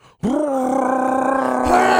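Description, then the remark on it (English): A person vocally imitates a Chewbacca roar, as for a prank phone call: one sustained, strained, rising-then-steady growling howl lasting nearly two seconds, loud and raspy with a slight upward lift at the end. “just scream or make a Chewbacca noise or something. Just like a, oh, ah, ah, and then hang up.”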